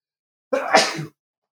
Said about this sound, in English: Hold on, I'm going to sneeze.